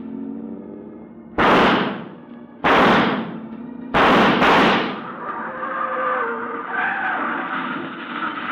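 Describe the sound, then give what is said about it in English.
Four loud shotgun blasts from a man in a car ring out, the first two spaced apart and the last two in quick succession, each with a short decaying tail over a steady engine-like drone. “there's a man in that car with a shotgun. He may still be able to use it.”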